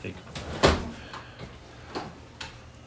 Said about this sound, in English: Hey, babe, can you get this cat out of here? And if he comes through the front door, hang him upside down by his tail. He opens the front door.